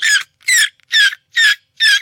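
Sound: human imitating a dolphin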